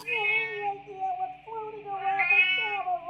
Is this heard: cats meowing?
yes